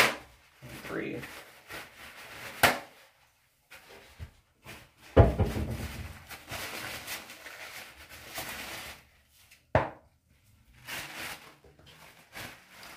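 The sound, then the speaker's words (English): Paper towels wipe out something holding old face makeup in irregular scrubbing bursts, a dry papery rubbing that starts and stops, with a few sharp knocks and thumps between strokes. “I'm gonna wipe it out. I'm gonna paper towels do I need too.”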